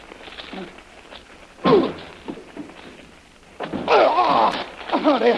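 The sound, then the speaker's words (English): A door is forced open with heavy thuds: a single loud bang, then a longer burst of pounding mixed with creaking and straining, with no talking. “I'm going to go back to that door and try it again.”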